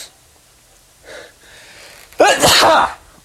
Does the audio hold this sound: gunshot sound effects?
no